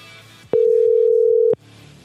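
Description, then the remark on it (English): A single steady, mid-pitched telephone ringing tone sounds for about one second, starting and stopping abruptly with a click, between stretches of faint low background murmur. “Oh, I thought someone picked up then. Yeah, and all right, it made that clicking noise.”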